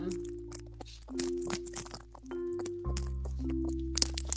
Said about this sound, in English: And then as far as the chimes, I do have a small singing bowl. And then I also have these little chimes. Bing.